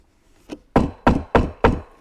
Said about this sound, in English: You hear the knock on the door. Imagine that the unexpected visitor is your boss from work.